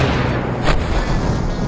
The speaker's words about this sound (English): Oh, everything's about to explode. Head away.